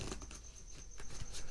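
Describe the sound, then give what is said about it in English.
Playing cards being shuffled in a zero shuffle: soft, rapid papery pattering and riffling clicks, fairly quiet and irregular, with no voices. “So this is my zero shuffle.”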